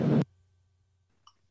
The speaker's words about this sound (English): I have my gunshot.